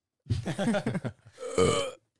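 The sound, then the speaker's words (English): A loud burp rumbles for almost a second, then after a brief pause a second, shorter and rougher belch follows. No one speaks. “Well, maybe you should stop chewing into the microphone, burping into stuff, interrupting people, and coming up with critiques halfway through the episode as if we didn't already start.”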